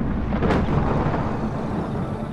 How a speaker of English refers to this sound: One thing we do know about Venus is that it has lightning. So you might hear thunder.